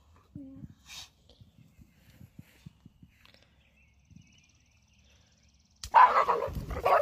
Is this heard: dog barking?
yes